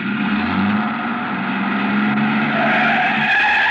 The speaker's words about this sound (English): I started back toward the street when a man, a much larger man than DuPont, came out the side door and got into the truck. He turned over the engine and switched on the lights before I could get clear.